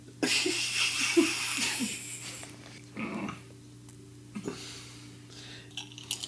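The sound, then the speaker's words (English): Crisp, crackly crunching of chips being chewed, loudest in a dense burst at the start, then a few scattered crunches and rustles with quiet gaps between them. “Are you eating chips?”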